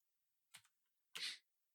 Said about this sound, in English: Roll the dice.